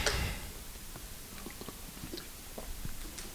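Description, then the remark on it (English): Quiet, wet mouth sounds of someone drinking water in front of an audience, with soft gulps and small clicks spaced irregularly over a few seconds. No one speaks. “I'll drink some water.”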